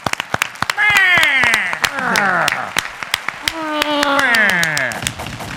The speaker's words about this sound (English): And he's right. Let's clap for each other. Everybody deserves their flowers, though.